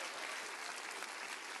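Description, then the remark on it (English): An audience claps their hands together in a steady, dense burst of applause, loud and continuous throughout, with no voices standing out above it. “Clap your hands real big and say, I believe that right now.”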